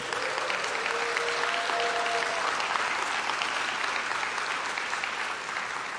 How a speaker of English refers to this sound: Worthy of the applause.